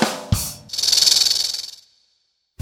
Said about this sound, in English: You might not think it's hysterical or funny when a snake hisses at you. When a snake feels threatened or scared, it sticks out its tongue and makes that hissing sound. That's the way a snake says, "Back it up, buddy."